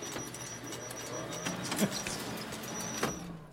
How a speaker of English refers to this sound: I think that needs oiling or something because that sounds very squeaky, that photocopier.